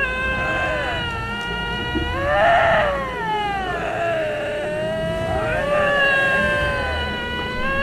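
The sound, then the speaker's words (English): A Canadian lynx gives a long, loud, wavering yowl, its rich harmonic cry sliding up and down in pitch across several drawn-out phrases, with no one talking over it. “Canadian lynx? Oh. It's a lynx!”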